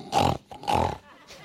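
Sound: pig grunting and oinking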